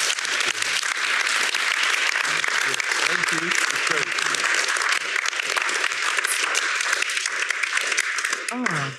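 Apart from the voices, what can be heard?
audience round of applause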